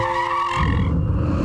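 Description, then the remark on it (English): Car tires screech in a skid before a crash: a loud, high-pitched screech holds steady for about half a second, then gives way to a heavy, low rumbling noise. No voices are heard. “During the moments of a serious accident, you aren't thinking about who is at fault.”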